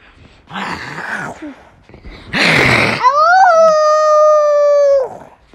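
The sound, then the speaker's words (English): A person imitates the howl of the White Wolf: a couple of breathy huffs, a loud rasping growl, then a long, sustained howling note that rises slightly and holds before cutting off. “And then all of a sudden they heard this noise right in their ears. And that's when they knew the White Wolf was right in front of their face.”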